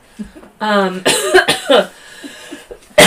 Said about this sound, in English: My cough has been showing her face more, and I'm like, you've got to go.